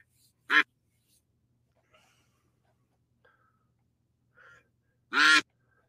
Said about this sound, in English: Let's just listen to the sound of the ducks.